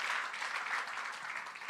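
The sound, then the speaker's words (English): A church audience claps steadily, giving God a big round of applause: a dense wash of many hands applauding together at an even, sustained level with no voices breaking through. “And I think we can give God the glory by giving God a big round of applause for all that He has done.”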